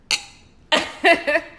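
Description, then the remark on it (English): Glasses of sweet red wine tap together in a toast among friends: one bright, ringing clink that fades quickly, followed by a few short bursts of voices. “And we've got wine. Yes. Red. Sweet. Cheers.”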